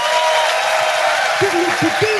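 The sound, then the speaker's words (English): An audience at a live comedy show hosted by Richard Herring claps for comedian Tim Key in a steady, dense burst of applause that holds loud throughout, with a few short voiced shouts or whoops rising over it toward the end. “Ladies and gentlemen, will you please give a fantastic round of applause to the amazing Tim Key.”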